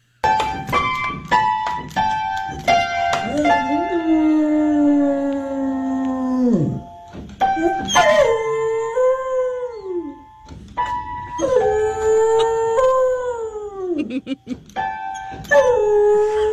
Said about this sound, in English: Here is Buddy Mercury. He's a Beagle Basset Hound mix. Mm. And he is, he's doing all of the things that you hear now, playing the piano and singing. Here's Buddy.